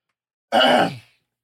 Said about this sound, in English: You really, and judging by how you're clearing your throat right now, do you think you'd make it very far?